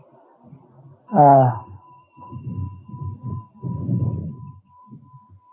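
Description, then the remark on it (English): A mindfulness bell struck once: a loud, bright strike, then a steady ringing tone that lingers for several seconds over low, muffled rumbling and soft shuffling sounds. “True that every time we stop talking, we hear the birds and the wind, thanks to the bell.”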